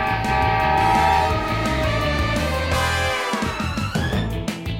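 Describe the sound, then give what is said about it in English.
A runaway train called Mighty Mila rumbles loudly and steadily, its horn blaring in long sustained tones over a chugging low-end rhythm for several seconds, with no voices. “I'm gonna fix that fence just as soon as I stop this train that's also Mighty Mila.”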